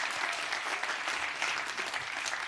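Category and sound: crowd, audience hand clapping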